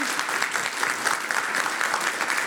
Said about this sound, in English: I just want to applaud.